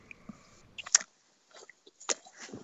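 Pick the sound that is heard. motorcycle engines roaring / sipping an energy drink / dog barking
sipping an energy drink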